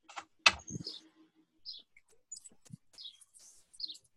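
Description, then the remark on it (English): Faint, scattered bird chirps in short, high tweets at irregular intervals across a quiet outdoor background, with a sharp knock and low thump near the start. “It looks like I'm definitely hearing some birds.”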